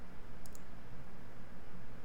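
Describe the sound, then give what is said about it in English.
Two quick, light computer keyboard clicks sound close together near the start as the pet Gaz lies on the keyboard, then only a steady low hiss of background noise continues. No one speaks. “Oh, okay, Gaz was laying all over my keyboard.”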